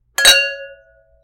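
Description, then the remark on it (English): Wine glasses clink together in a toast: one bright chime whose clear ringing tone fades out over about a second, with no voices. “Okay, well, I say let's cheers and dive into this wine. Cheers and chug.”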